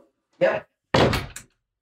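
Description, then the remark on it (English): A door opens with a short, muffled sound as a dog is let out, then after a brief pause closes again with a fuller thud and rattle, with quiet in between. “And right out the door she went without any problem.”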